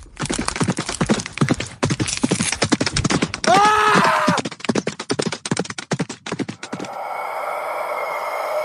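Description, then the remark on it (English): A rapid, loud barrage of heavy hoof stomps pounds as a man is crushed under the hooves of the Dear Lady, broken midway by a shrill horse whinny, then the stomping stops and a steady rushing noise takes over. “The man was knocked to the ground, and with a few heavy stomps, he was crushed to death under the hooves of the Dear Lady.”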